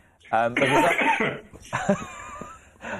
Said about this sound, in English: I'm going to let you have a good big cough while I ask you the next question. You might need to.